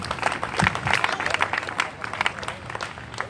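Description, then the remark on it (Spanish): An audience breaks into steady applause for the Lord, many hands clapping in a dense, crackling wash that holds at an even, moderately loud level throughout, with a few voices faintly mixed in. “Denle el aplauso al Señor.”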